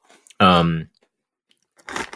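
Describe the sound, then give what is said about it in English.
A short hummed vocal sound, then a pause, then a brief burst of crunchy chewing on a squid-flavored coated peanut snack right at the end. “It's that crunch on the outside and then the crunch of the peanut.”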